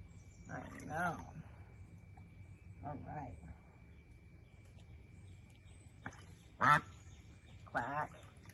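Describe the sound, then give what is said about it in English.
A duck quacks in short, raspy bursts, about five calls spaced irregularly with quiet gaps between, over a faint steady hum and low background rumble. “No, the ducks stay talking shit.”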